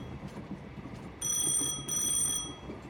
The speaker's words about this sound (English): So, a couple of moments after that, you hear from behind the bar, like an old, think of it as like an old fashioned telephone with like the real bells.